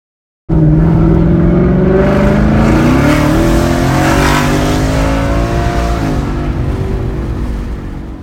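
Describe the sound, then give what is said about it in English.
A loud P51 Mustang engine with a custom, electronically adjustable exhaust and a 10-speed automatic revs hard as it is wound out, climbing through the gears, its exhaust note rising and shifting in steady sweeps for several seconds before easing slightly at the end. No one speaks. “Here's Jack winding out the P51 Mustang, and he puts his own custom exhaust on there that is electronic as well that you can adjust.”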